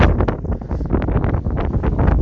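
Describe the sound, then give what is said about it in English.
Loud, gusty wind buffets a microphone, producing continuous low rumbling roar with irregular bursts, dominant throughout, no speech. “Oh, it's getting windy here.”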